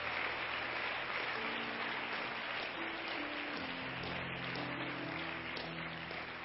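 A crowd claps steadily for several seconds, a dense, even wash of hand claps with faint voices and a low murmur underneath.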